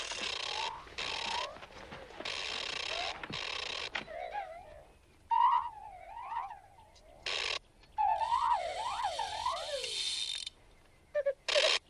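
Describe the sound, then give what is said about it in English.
A mechanical golden owl named Bubo clicks and wheezes: harsh hissing bursts alternate with quick, warbling whistled chirps that rise and fall in pitch, fairly loud and with no voices. “Do you understand all those clicks and wheezes?”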